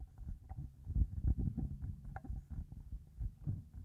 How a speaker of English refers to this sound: Let's do some handling noise.